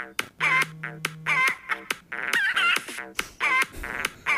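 Rapid, loud chicken clucks and squawks repeat in a bouncy rhythm over a steady low musical tone, sounding like a playful novelty tune built from bird calls.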